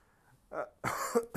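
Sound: coughing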